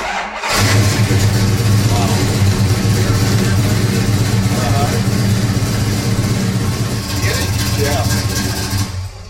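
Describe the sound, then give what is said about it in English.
After a split second of quiet, a big V8 muscle car engine roars to life as two muscle cars are fired up, recorded on an iPhone, settling into a loud, deep, throaty rumble with occasional revs that carries on steadily to the end. “He fired up his two muscle cars.”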